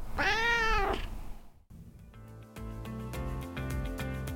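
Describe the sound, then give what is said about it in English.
A cat named Bruce lets out one drawn-out, rising-and-falling meow, clear, before a brief pause and the start of steady rhythmic music. “Somehow, this indifferent human was retrained by a loving cat. Isn't that right, Bruce?”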